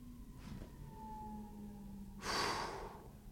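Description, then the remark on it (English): An emergency siren wails faintly in steady, slowly drifting tones, muffled as heard from inside a car, then a brief breathy rush of noise sweeps over it near the end. “You can hear the sirens.”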